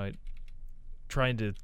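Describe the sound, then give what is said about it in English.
Quiet, rapid clicking of keys on a computer keyboard, with a man's voice briefly speaking before and after the typing. “I'm still not the greatest at typing and talking at the same time.”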